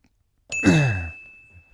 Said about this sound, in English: Can we get a ding on that?